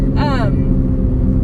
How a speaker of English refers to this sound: You hear that car squeaking? Yeah, that was screeching.